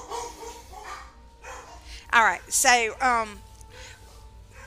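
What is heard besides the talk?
dogs barking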